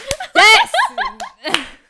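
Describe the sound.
A few sharp, irregular hand claps ring out amid an excited, high-pitched vocal squeal and giggly laughter, the voice rising and falling between the claps.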